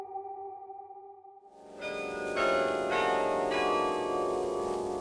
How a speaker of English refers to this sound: The bells in the church tower have been pealing over the city for an hour.